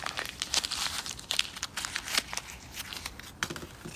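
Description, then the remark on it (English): A paper image being crumpled up, with a steady run of dense crinkling and crackling bursts for several seconds and no voices. “What happened to this image that God originally intended for all time just got crumpled up.”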